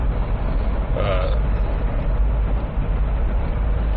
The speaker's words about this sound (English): Man in his car driving home from work.